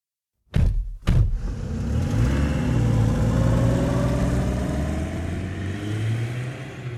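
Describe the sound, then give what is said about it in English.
Two sharp thumps, then a car engine catches and settles into a steady rumble, its pitch shifting slightly as it pulls off, driving to the Robina Mansion, and eases a little toward the end. No voices. “drove us to the Robina Mansion and dropped us off at the bottom of the driveway.”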